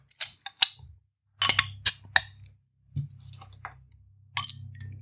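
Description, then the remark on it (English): Bottles or glasses of Italian blonde beer clink together in a toast, a cluster of bright, ringing taps, several in quick succession with short pauses, over a low background rumble. “So it's an European champion beer. Cheers. Cheers.”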